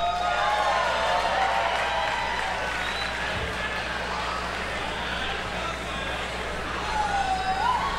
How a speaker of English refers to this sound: To introduce tonight's headliner, please give a warm round of applause for Thax Douglas.